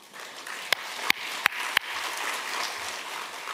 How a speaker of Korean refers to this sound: 신기한 것은요, 내가 주님 앞에 박수를 치다 보면 내가 일어나는 겁니다.